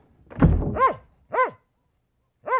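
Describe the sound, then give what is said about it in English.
A dull thump opens, then a dog gives three short, tonal barks, spaced out with brief pauses between them, with no one talking. “The owners have decided to replace you with a puppy.”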